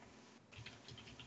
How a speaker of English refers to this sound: I'm trying to Google this and I keep typing it wrong. I typed, how much chuck would a woodchuck chuck?